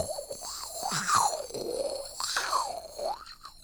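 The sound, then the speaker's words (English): A voice imitates a dentist's saliva suction tube: gurgling, warbling slurps that swoop up and down in pitch over a steady airy hiss, rising to two louder peaks. “It's like the noise when they put that suction thing in to suck up all the water in your mouth.”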